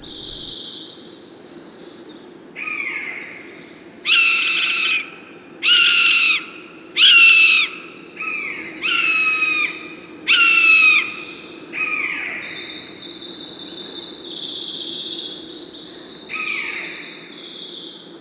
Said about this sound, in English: We heard an owl just before we set off.